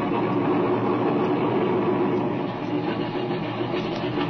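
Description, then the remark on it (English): A loud, steady drone of an airplane engine running as the plane taxis toward the speakers, with a continuous rumbling hum and no voices. “There's the engine. Look, he's taxiing over this way.”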